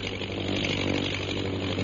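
The engine of a propeller fighting plane with a mounted gun, circling overhead above natives in the jungle, drones steadily and loudly, a buzzing, rasping roar with a low hum beneath it that holds an even level throughout, with no voices.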